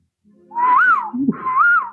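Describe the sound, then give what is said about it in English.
Two rising-and-falling whistled notes, fairly loud, a person imitating a bird call, with a brief low rustle between them. “one of those whistle calls.”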